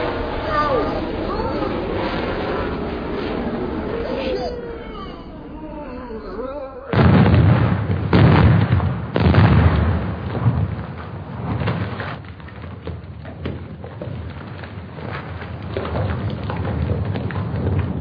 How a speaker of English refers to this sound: What is it, soldier? Sir, the planes are trying to drop bombs on us. Oh, shit. Stop your fire and hit the deck.